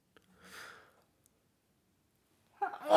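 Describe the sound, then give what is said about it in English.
A soft breathy intake, a pause, then a sudden loud sneeze bursting out at the very end, cut off abruptly. No one speaks. “I don't know why I'm sneezing.”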